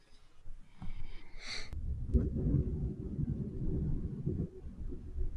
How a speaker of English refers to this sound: Well, that was ominous. Oh, it's thunder. I'm sorry, I got a match with the Undertaker after we get off. I couldn't figure out what that was.